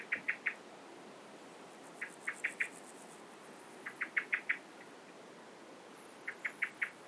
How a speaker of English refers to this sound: Standing in the middle of quite a small meadow that hasn't yet been cut. And as well as that blackbird that's really annoyed by me, I'm hoping you can hear the differing sounds of grasshoppers all around me.